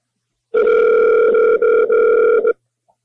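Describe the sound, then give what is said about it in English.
A loud electronic ringing tone of an outgoing phone call sounds once, a steady buzzy tone lasting about two seconds with a couple of tiny dropouts, then cuts off into silence. “Zach tried to call. Let me call him.”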